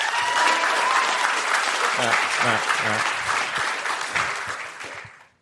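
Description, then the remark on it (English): An audience applauds to vote for a proposed answer to a question, bursting into sustained, dense applause, loud and steady for several seconds before tapering off at the end, with a few voices and a brief spoken remark underneath. “Just do a round of applause.”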